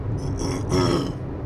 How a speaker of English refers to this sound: Man, I cannot clear my throat and save my life.